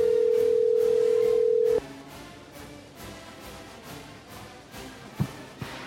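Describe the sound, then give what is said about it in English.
A loud, steady telephone dial tone hums for about two seconds, then cuts off abruptly, leaving faint line hiss and a couple of soft clicks or thuds near the end. No one speaks. “Gotta make the phone call to the one and only”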